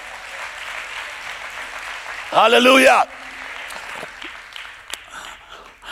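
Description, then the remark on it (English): An audience claps steadily in a dense, continuous patter, while a single voice loudly shouts a word over the applause partway through. “Now, if you're going to clap, then clap for real.”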